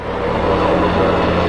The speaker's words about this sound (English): Got a helicopter going by.